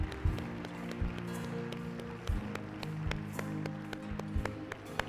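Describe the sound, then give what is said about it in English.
A church audience claps hands in praise of Jesus in steady, scattered bursts of applause over a low sustained hum, the claps crisp, continuing for several seconds with no one speaking. “Go ahead and give Jesus a hand clap of praise.”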